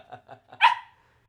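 A dog lets out a few quick low grumbling huffs, then one loud, sharp bark that rings out and fades, with no one talking.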